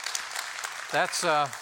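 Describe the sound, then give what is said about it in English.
An audience claps for baptisms in a steady, soft, even patter, then a loud voice cuts through toward the end with drawn-out vocal tones over the fading applause. “You could clap for that.”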